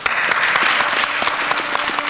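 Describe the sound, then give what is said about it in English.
In a film scene, everyone stands up and bursts into sustained applause, dense overlapping claps at a steady loud level throughout, with no voices standing out. “Everyone claps.”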